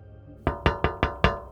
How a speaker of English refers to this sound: I was gonna knock.